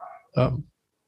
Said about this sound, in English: Dogs are up. Someone's home.